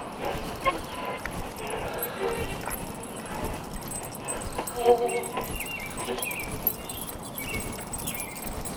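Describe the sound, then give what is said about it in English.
The Blinky Dogs approach with their attendant: a few short barks and steady clip-clopping steps pass by, set against a busy, noisy crowd with people talking throughout. “We got the Blinky Dogs coming with their attendant.”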